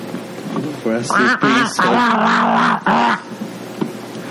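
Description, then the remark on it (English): A goose named Clary, from a cage-free goose farm, gives a run of loud, nasal honks, four or five quick blaring calls in a row, with quiet before and after. “One, I run a cage-free goose farm, okay? My goose is always loose, okay?”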